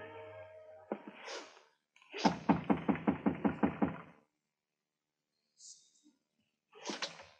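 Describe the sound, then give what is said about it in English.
An unlocked office door is tried and opened: a quick run of about nine sharp, regular rattles, like a handle being jiggled, then a few softer clicks and shuffles before quiet. “The door was unlocked.”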